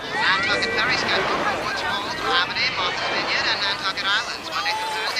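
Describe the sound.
A busy beach crowd babbles continuously, with overlapping voices, shouts and laughter, people running into the water and a man calling to his dog Pippet, while a small tinny transistor radio voice, an announcer giving ferry information, talks underneath, all at a steady, fairly loud level.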